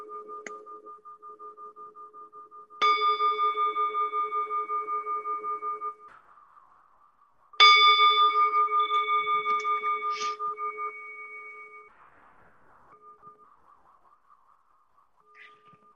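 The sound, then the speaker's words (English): A meditation bell is struck twice, several seconds apart; each strike rings out clearly and hums with a slow, pulsing shimmer as it fades. A soft, steady tone lingers in the background. “Can you hear that bell?”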